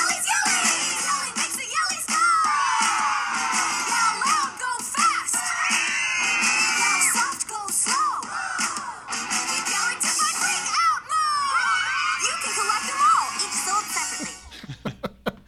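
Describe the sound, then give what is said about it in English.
Audio from a commercial: a crowd of people yells and screams continuously, loud and overlapping, with bursts of laughter mixed in, the chaotic shouting carrying on for the whole stretch before cutting off abruptly. “It's funny, you still, even if you want to slow down or stop, you still have to keep yelling.”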